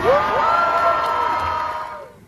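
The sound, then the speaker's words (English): A large crowd of Free Palestine protesters in Boston cheers and shouts together in a loud, sustained roar of many overlapping voices, holding steady for about two seconds before quickly dropping off. “That's a Free Palestine crowd in Boston.”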